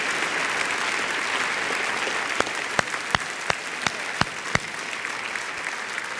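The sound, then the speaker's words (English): An audience gives the Lord a clap offering, applauding in a steady, dense wash of clapping, with a run of about seven sharp, evenly spaced louder claps standing out in the middle before the applause continues. “But I want you to clap for the King of the Universe, amen, that Hulk Hogan needs to get to know.”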